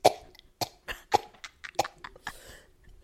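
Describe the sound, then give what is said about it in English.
A woman performs an exaggerated, slow-motion cough, drawn out into a series of separate breathy bursts at uneven intervals, fairly loud, ending with a sharp final burst. “She really coughed in slow motion, y'all.”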